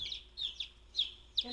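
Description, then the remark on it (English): Several high, thin peeps of chicks in a brooder box repeat in quick succession, fairly soft, over a faint low hum with no talking. “I'm going to put the other heat on them. Okay. Just because they don't know to go under there right now.”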